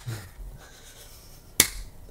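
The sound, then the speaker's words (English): A single sharp hand clap, made to sync the audio and video of a recording, cracks out once against a faint, quiet background hiss. It is short and bright, with no talking around it. “Now we have a clap sync, so we can fix I it.”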